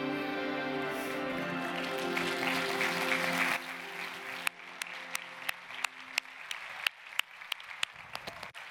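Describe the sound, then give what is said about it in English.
A church audience at Sanctus Church applauds loudly over sustained musical tones, then the clapping thins out into a dozen or so scattered, sharp individual claps at uneven intervals. “Why am I clapping?”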